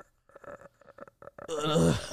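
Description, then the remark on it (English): A few quick spoken syllables give way to one loud, drawn-out, deliberate burp, low-pitched and rough and rasping, lasting under a second and swelling at the end. “Yeah, I can burp on purpose.”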